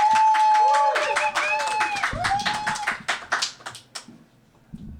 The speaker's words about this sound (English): Put your hands together, everyone, for Jackie Hagen!